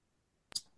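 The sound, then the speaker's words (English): A single sharp metallic snip of scissors blades closing, crisp, with a quick double click and a short ringing tail against near silence. “He won't put the scissors down.”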